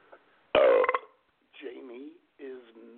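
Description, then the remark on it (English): A loud burp rumbles out over about half a second, followed by a couple of short, gurgling vocal sounds that could be someone talking or imitating the burp. “Well, you know, when I burped,”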